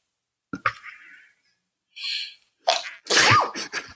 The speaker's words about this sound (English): Okay, hold on. I'm going to sneeze.